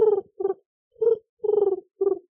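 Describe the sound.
A person imitates a wood pigeon's call: five throaty, cooing hoots in a loose rhythm, each a short, mid-pitched, slightly buzzy burst with brief pauses between, fairly loud with no other talking.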